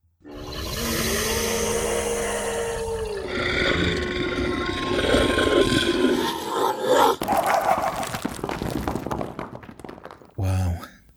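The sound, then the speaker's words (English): A loud, sustained animal-like roar from a vampire dog attack, with a growling, snarling texture, swells over several seconds, then breaks into a crashing impact and rough noisy rumble, ending with a short sharp burst. “Vampire dog attack, go!”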